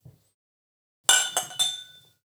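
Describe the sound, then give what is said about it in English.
Three bright glass clinks in quick succession in a Basil Hayden's toast, each a sharp ringing chime with a shimmering tail that fades over about a second. No one speaks. “You're getting a Basil Hayden's toast.”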